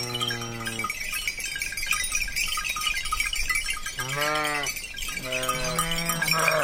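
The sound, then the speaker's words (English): Sheep bleat loudly several times, their calls overlapping, while a constant jangle of many small bells rings throughout as a shepherd brings his flock of 50 belled sheep down from the mountains in late afternoon, in the Tuscan village of Gragnano, Italy. “In late afternoon, a shepherd brings his 50-belled sheep down from the mountains to be milked and turned in for the night.”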